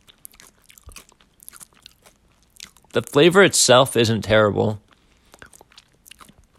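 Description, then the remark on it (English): Crunchy chewing of expired tortilla chips: soft, irregular crackling bites over the first few seconds, then a person speaks briefly before faint chewing resumes. “Had about 40% more crunch than I thought it was going to.”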